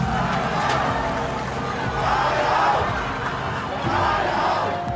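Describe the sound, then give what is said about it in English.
A large angry crowd of protesters surrounding the LegCo against the anti-extradition bill shouts and roars in a dense, continuous wall of voices, with surging swells of angry yelling rising and falling over five seconds and no single speaker standing out. “But like for the whole morning and even sometime in the afternoon, the LegCo was surrounded by a lot of people. I would say an angry crowd.”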